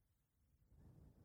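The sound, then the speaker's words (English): A heavy breath blows into the microphone: a low, rushing exhale that swells partway through and holds steady to the end. No one speaks. “Damn, you got a heavy breath there.”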